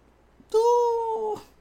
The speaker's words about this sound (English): Ooh. Hi kitty, hi kitty. Do you see my cat being adorable?